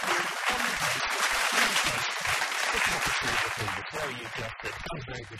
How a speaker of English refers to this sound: We don't often have guests up the mountain, but we've got one today. Some applause, please, for ….